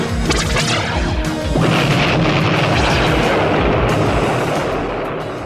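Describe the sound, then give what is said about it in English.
Loud cartoon explosive blasts boom one after another, a rumbling barrage with crashing debris that stays dense and roaring for several seconds, with no voices. One of the blasts dislodges a boulder, which smashes the Thunderhawk vehicle. “One of the blasts dislodges a boulder, which smashes Thunderhawk.”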